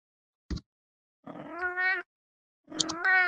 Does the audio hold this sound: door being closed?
no